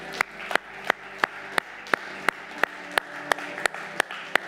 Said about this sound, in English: Can somebody give us a good amen and a hand clap? Come on.